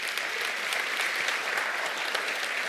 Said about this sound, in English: Come on, give the Lord a hand clap right now.